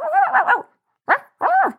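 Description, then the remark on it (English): A voice imitates a dog: a rough, warbling growl lasting over half a second, then a pause and two sharp barks in quick succession. “It started to growl, then it barked and lunged.”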